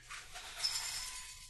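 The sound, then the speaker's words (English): Parmesan cheese Goldfish crackers poured into a bowl, making a steady, dense rattle of tiny crisp clinks that lasts about a second and a half, fairly quiet, with no voices. “Pouring goldfish into a bowl.”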